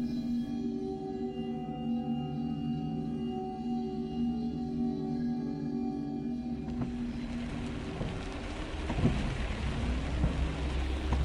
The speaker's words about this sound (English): November 2nd, 1966. As the rain pelted against a red-paneled Ford Econovan, Woodrow Derenberger gripped the steering wheel firmly as he headed home down I-77, just south of Marietta, Ohio.